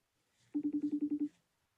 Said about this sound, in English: Yeah, I hung up on him.